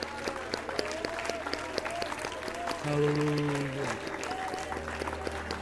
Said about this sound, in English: Would you mind clapping your hands in praise to the Lord tonight?